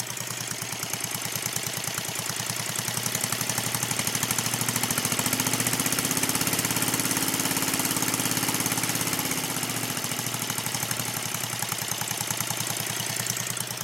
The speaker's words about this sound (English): So we actually have a hydrogen engine. Pretty cool.